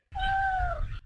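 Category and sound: animal, cat meowing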